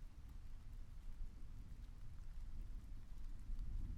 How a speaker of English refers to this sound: And I got up and I went outside the monastery into a special garden in the woods. And it was raining. It was cold. And the dark woods were filled with mist.